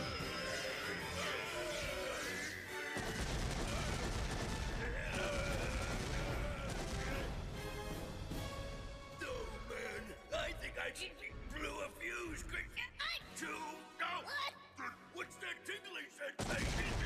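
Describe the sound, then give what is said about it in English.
A sustained, roaring explosion rumbles on for many seconds with dense crackling bursts and booms layered over a broad low-end roar, loud and continuous, with voices speaking underneath. “Jeez, this is the longest explosion I've ever seen.”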